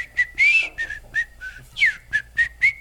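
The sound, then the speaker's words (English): A person whistles a quick, lively tune of short bright notes with a few sliding pitches, clear, with no talking. “And so I've been whistling most of my life ever since my father said, put your lips together and blow.”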